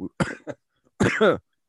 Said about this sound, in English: That's our cough button. Are you okay? Yeah, we have a cough button, but it's a backwards cough button. It just puts coughs in.